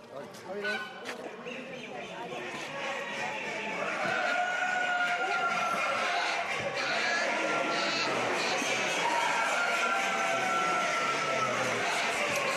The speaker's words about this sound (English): As we make our way into the massive show hall, nothing can prepare you for the collective sound of ducks, turkeys, geese and chickens, all talking away to each other.